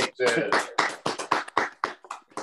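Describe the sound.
Soft, light clapping, about ten quiet claps in a loose, steady rhythm, with voices murmuring underneath.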